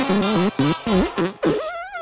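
A rapid string of about five loud, buzzy fart sound effects, each a short wobbling blast, ending in a longer squeaky rising toot. Prominent, with no one talking.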